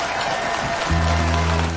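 A large audience claps steadily in a dense, continuous wash of applause for military veterans at a show in Branson, and about halfway through a low, sustained musical tone joins underneath the clapping.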